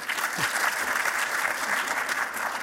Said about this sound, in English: By applause, how many people want it this way?